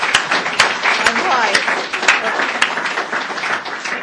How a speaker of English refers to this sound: So I think we should give the champion a quick round of applause for just making it in.